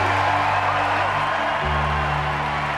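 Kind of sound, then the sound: crowd, audience applause and cheering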